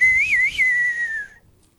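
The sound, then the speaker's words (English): A person whistles the Coyote Call from Sergio Leone's Dollars trilogy: one sustained, clear note that wavers twice in pitch, then holds steady and fades out after about a second, with no talking. “And the Coyote Call, we'll play it for you, is, you know, some people...”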